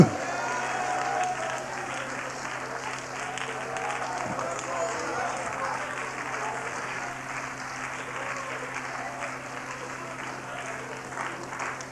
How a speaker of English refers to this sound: Come on, clap your hands.